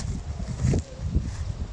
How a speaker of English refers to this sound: See if we can just stomp through this long grass here. I'm sure it'll be fine. There we go. No snakes yet.